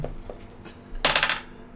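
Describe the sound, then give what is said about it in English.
A few light taps, then a short, bright rattle of dice tumbling and clattering across a hard tabletop, fairly loud, settling within about half a second. “This is a loaded dice. Have another go”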